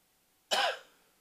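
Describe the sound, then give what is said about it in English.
A single sharp cough bursts out after a moment of near silence, loud, trailing off quickly into quiet. “Let me know when you're going to cough.”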